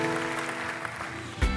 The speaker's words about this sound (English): Come on, give God a big clap today.